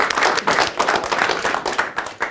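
An audience breaks into steady applause, many hands clapping together in a dense, crackling wash that stays fairly loud and even throughout, with no voices over it.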